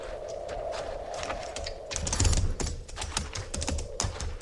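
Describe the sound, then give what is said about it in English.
Several horses, led slowly forward by people, clip-clop at a slow walk, an uneven patter of sharp knocks on hard ground, growing busier partway through, with no voices. “Now, everybody will move slowly forward, leading your horses.”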